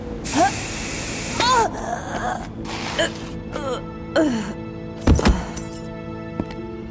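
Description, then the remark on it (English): A thief sprays sleep spray into a museum guard's face: an aerosol hisses in a loud burst, followed by shorter hissing spurts, mixed with gasps and choked vocal noises. “The big thief just sprayed her in the face with something.”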